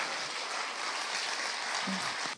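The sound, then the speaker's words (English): An audience claps together in a dense, steady burst of applause that holds at an even level for a couple of seconds, with no voices over it. “I think we should give Claire a big round of applause for”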